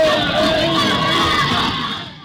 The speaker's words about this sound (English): So, what actually happened at the Thin Yan Festival that was so insane, apart from all that screaming and noise that you just heard?